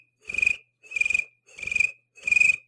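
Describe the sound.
A person mimics a cricket with four evenly spaced, trilling chirps, each a short buzzy burst with a pulsing rattle, fairly loud, with no talking.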